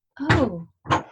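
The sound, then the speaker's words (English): A toddler wails in two short, strained bursts with a falling, whiny pitch, the first longer than the second, clear with no one talking over it. “Oh, excuse me. That's a little toddler.”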